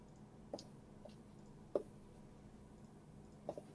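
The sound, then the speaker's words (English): A few faint, sharp clicks and clacks scattered over a few seconds as dice are rolled on a table for an attack in a tabletop role-playing game, with one slightly louder knock midway and otherwise near silence. “Give me 1 second. I have to roll.”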